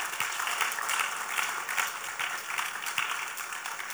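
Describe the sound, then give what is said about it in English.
An audience claps together to celebrate Jesus in a sustained burst of applause, dense and steady across the whole moment, a bright, crackling wash of many hands. “Celebrate Jesus with a clap.”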